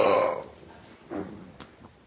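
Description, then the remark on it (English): A loud, drawn-out yawn opens the moment and trails off into softer breathy sighs and small mouth sounds. “Oh, sorry, I just had an uncontrollable yawn right there.”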